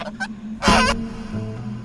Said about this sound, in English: I have had a pair of elderly gray geese, a goose and a gander, living on this place for a number of years, and they have been my friends.